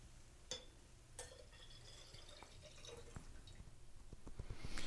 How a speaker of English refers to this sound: So, and then you can just pour those evenly between the glasses. Give it maybe a little bit of a swirl.